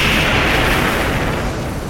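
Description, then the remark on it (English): A massive imprisoned squid monster, struck by lightning from the electrified horn of the Beetle Titan, erupts in a loud, sustained explosion roar filling the whole two seconds, dense rumbling low end with a hissing wash on top, slowly easing off toward the end with no voices. “The massive squid radiates with a blinding light before erupting into a brilliant explosion.”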